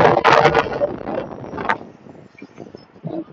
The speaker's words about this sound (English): You might hear some wind, too.